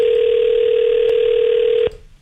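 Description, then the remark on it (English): A loud, steady telephone dial tone hums continuously for almost two seconds while a call is being placed, unbroken, then cuts off abruptly with a faint click, leaving a quiet line. “So anyway, I figured maybe we should phone”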